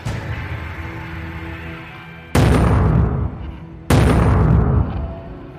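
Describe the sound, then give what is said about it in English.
A steady low rumble runs underneath, then two loud, sudden blasts land about a second and a half apart, each a sharp boom that rings out and fades, as men strapped to the bed of a speeding truck launch RPGs at a spaceship. “It's the random old guy driving his truck, speeding towards us, with several of his buddies strapped to the bed of the truck and launching RPGs at the spaceship.”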